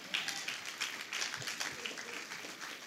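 An audience claps together in a steady, dense wash of applause that fills the whole moment, with no clear talking over it.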